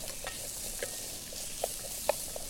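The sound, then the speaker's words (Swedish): Garlic and zucchini sizzle steadily in a pan on a gas stove at fairly low heat while a utensil stirs them, giving a constant hiss broken by a few sharp scraping clicks, the loudest near the end. No one speaks. “Och steka vitlöken och zucchinin under omrörning. Så att det inte bränner fast liksom.”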